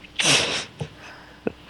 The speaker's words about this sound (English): Hang on, coughing fit.